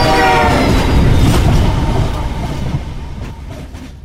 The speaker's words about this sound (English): His colleague screamed a warning. The oncoming train had a cattle catcher.